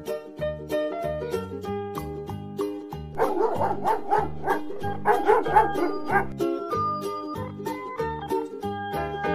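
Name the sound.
dog barking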